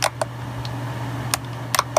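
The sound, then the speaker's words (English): A handful of sharp trackpad button clicks on a computer during an operating system install land at irregular intervals, some in quick pairs, over a steady low electrical hum with no one speaking; the clicks appear not to register. “The mouse click appears to not be clicking though.”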